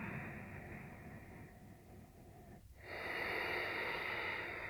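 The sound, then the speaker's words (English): Nasal breathing with the mouth closed and a constriction held in the back of the throat, drawn down into the belly: a long, steady airy breath, a brief pause, then a fuller, louder rush of air drawn through the nostrils, with no talking. “Breathing down to your belly.”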